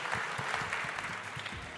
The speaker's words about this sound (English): So let's have a big round of applause for all of those guys as well.